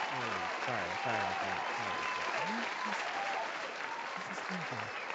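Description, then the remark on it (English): Loud, continuous applause from a crowd, a dense wash of many hands clapping steadily, with some voices murmuring underneath. “Can you hear the clapping?”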